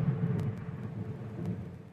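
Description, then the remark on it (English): A low, rolling rumble of thunder from a thunderstorm fills the moment, deep and steady for a couple of seconds with a few faint crackles on top, and no voices over it. “Thunderstorm happened. Wow. Yeah, did you hear that?”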